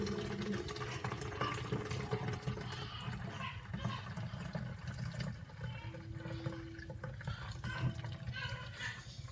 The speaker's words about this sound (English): So, here's the after effect of my milk. I'm gonna hold this strainer. Slowly but surely pour the milk.